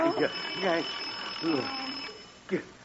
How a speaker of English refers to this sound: that was just the alarm on your clock. It happened to go off.